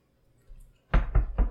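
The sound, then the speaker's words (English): Three quick, sharp knocks rap against the window of a van where a man is napping, in an even rhythm, loud and hollow-sounding, after a brief stretch of faint low rumble. No one speaks. “So I'm gonna just rap on the window.”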